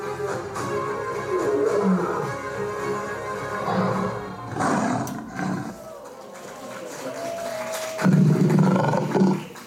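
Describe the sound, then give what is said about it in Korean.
A young lion roars several times in deep, rumbling bursts, loud, with the heaviest roars near the start and again toward the end, and no one speaking. “So where is this young lion going?”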